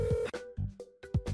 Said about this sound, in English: we're going to find Jiggly Caliente's number on one of your phones and call her and see if she answers